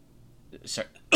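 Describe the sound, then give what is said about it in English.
A single quick throat clear: a brief raspy, breathy burst, followed by the sharp start of another sound at the very end. “Clear my throat.”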